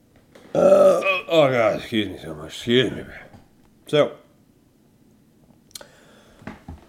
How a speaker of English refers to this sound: Oh, god damn. Fuck. I got the hiccups.